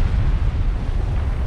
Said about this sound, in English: The moon's surface shook, and a blinding light filled their helmets. A hot shockwave sent them all flying back. More explosions rattled the moon.